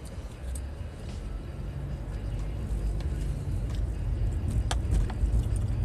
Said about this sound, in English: We got a lot of traffic today this morning.